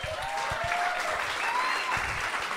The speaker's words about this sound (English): Do not clap for that motherfucker. And I'm going to tell you why.